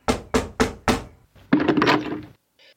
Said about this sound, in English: So, having finally arrived at the town hall, I gave my name to the receptionist, and a few minutes later I was knocking on the alderman's door.